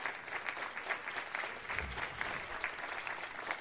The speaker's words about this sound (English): Look at just Trump. He walks out with his fucking wacky hair. Fake applause? No, they got like a small studio audience there.